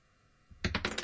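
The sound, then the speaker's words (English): A small die, rolled for a tabletop role-playing perception check, tumbles and clatters against hard objects, a quick burst of four or five sharp knocks after a brief quiet moment, fairly loud. “That hit some stuff.”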